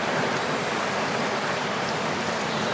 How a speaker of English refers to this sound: Actually, above, just because there's a riffly section here now, and at the very top of it is like a bit of a weir. I love that it goes slow and just at the mouth of the just at the outlet of the lake.